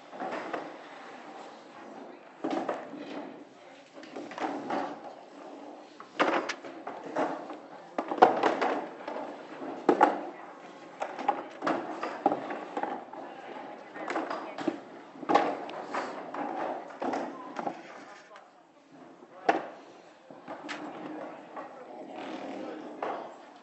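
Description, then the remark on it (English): Chairs clunk and scrape as they are set down one after another around tables, three or four behind each table, a steady irregular series of knocks and thumps with a murmur of voices underneath. “So if you want to put down, obviously, chairs for yourself, but there's going to be a few more chairs”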